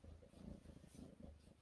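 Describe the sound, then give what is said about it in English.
A female cat purring softly, a low, steady rumble with a gentle pulsing rhythm, heard on its own apart from a brief faint click near the end. “Oh, is she purring?”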